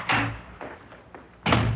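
A door is flung open by someone coming in without knocking, with a loud bang, followed by a couple of softer knocks and thuds, then another heavy slam-like impact near the end.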